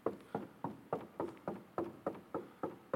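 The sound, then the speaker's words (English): A steady run of about ten knocks, evenly spaced and fairly quick, each a dull solid thud on a hard surface, with no voices present. “He's knocking.”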